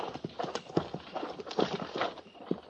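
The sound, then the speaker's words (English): Several horses' hooves clip-clop in an irregular, overlapping rhythm, moderately loud, as troopers lead their horses out together on hard ground. “Stand a horse.”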